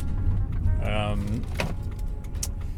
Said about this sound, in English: I'm recording this in my car while I drive.